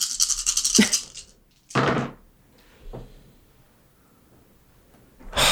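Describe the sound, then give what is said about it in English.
Dice are rolled in a large dice pool for a wits and awareness roll, clattering and tumbling in several bursts: a long rattling roll at the start, another sharp clatter soon after, a fainter one, then a final loud rattle, with quiet gaps between and no talking. “These are some of my biggest dice pools.”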